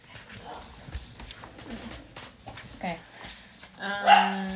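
A dog gives a single loud bark near the end, after a few seconds of quieter shuffling and faint vocal sounds in the background.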